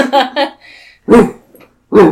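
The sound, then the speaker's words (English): A person imitates the bark of a pet poodle named Fifi: two quick yips, then two louder, drawn-out woofs spaced with short pauses, alone without other talk. “It's a familiar bark of your beloved poodle, Fifi, you call.”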